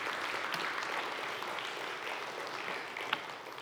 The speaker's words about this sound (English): Let's just applaud them and just thank them for the time that they put in.